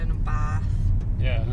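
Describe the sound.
Steady low engine and road rumble fills the inside of a moving car, with brief muffled voices speaking over the continuous drone.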